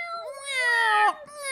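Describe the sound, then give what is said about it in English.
A voice mimics a wailing car siren: a loud, sustained, nasal howl held for about a second, briefly cut off, then starting up again, performed alone. “So anyway, the very distinctive siren of Ectomobile.”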